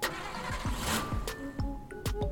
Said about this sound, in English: I can't get it started again. Will the engine even start if the airbags go off? I think it's going to need to be towed out of here.